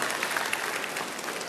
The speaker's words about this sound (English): It's okay to clap. There you go.